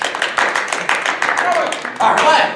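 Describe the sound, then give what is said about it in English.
A small group on a talk show claps rapidly and steadily for a couple of seconds, fairly loud, with a few faint vocal sounds mixed in. “Clap it up again.”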